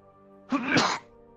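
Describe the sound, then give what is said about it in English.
A single sneeze, fairly loud, bursts out for about half a second, breathy and noisy, then stops, with quiet surroundings before and after. “Bless you.”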